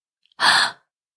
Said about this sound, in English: He then struck her cheek, and the goddess let out a gasp.